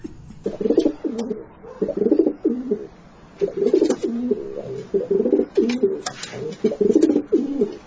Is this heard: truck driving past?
no